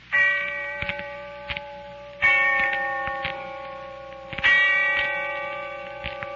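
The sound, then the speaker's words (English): A distant bell tolls three times at a slow, steady pace, each stroke ringing out and humming on until the next, with faint ticking clicks in between and no voices. “And when I heard the bell tolling somewhere in the distance, I remembered.”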